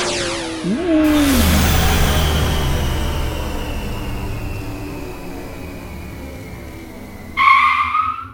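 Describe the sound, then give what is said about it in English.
A loud, sustained tire screech as a vehicle skids to a stop, the shrill squeal holding steady for several seconds before a brief, sharper burst of noise at the end. “They arrived at the light with a screech.”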